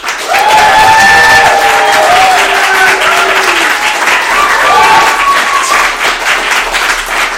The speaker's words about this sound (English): You, sir, you're going to determine, unbiased, who gets the louder applause.